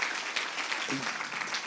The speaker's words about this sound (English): Can we just give a big round of applause